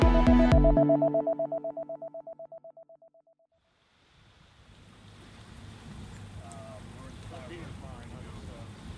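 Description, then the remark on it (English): A ringing metallic tone fades out over a few seconds, then busy waterfront ambience sets in at a dock where students load dive equipment and other gear onto several police boats: a low boat engine rumble, lapping water and faint, indistinct voices. “It's 8 o'clock on a Thursday morning, and students are loading up dive equipment and other gear onto several police boats tied off on the dock.”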